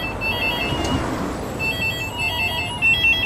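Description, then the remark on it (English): A payphone in Australia rings with a bright, trilling electronic tone in repeated bursts, one of 15,391 payphones across the country called at exactly the same time, heard over a steady wash of outdoor street noise. No one speaks. “While it's easy to ignore a homeless person, it's harder to ignore 15,391 phones ringing at once all over the country.”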